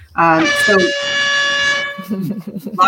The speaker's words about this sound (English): That's an air horn for the restaurant.